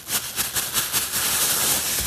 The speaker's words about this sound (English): Important sound number two, the sound of plastic bags crackling.